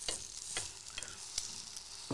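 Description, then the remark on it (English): Two tomatoes sizzle steadily face down in a frying pan, seasoned with a bit of salt and pepper, a hissing crackle with a few sharper pops and scrapes scattered through it, and no voices. “Last two tomatoes face down. A bit of salt. See, now we're getting some sizzling back again.”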